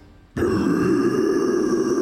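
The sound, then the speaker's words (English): A voice imitates a beast's roar: after a brief quiet moment, a sudden, loud, sustained guttural growl erupts and holds steady for nearly two seconds. “It was definitely a roar.”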